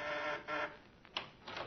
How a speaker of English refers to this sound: The doorbell rings.